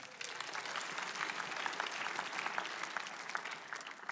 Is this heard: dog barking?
no